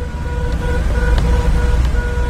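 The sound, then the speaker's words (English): During a cab ride around Cairo, car horns honk, one at a bad driver, in a string of short, steady-pitched blasts over a loud, continuous rumble of road traffic and engines, with no voices. “He began right away, and I quickly learned that many of the honks are for bad drivers, like this one.”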